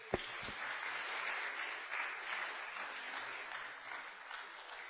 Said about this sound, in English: You can be seated, the four of you, and everyone will give you a big round of applause.